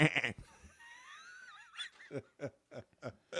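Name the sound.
goat bleating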